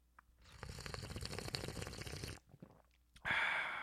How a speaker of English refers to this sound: If you have your coffee mugs, your travel mugs, your sippy cups, your doggy bowls, if you have a beer hat and you want to drink it like that, then go ahead and do so and join me in this sip of cafecito.